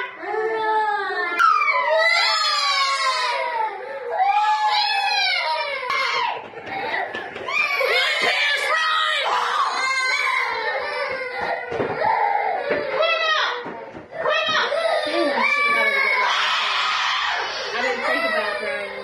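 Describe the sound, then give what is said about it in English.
Several toddlers cry and scream loudly and continuously, their high wailing voices overlapping in distressed, sobbing bursts throughout, as an adult wearing a Halloween scream mask frightens them at a daycare. “It shows an adult wearing some kind of a Halloween scream mask, and they're terrifying the toddlers.”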